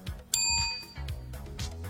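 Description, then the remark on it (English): A single bright bell ding, rung to mark a correct quiz answer, rings out clear, its metallic tone ringing briefly before fading, with low background murmur underneath. “Bell, please.”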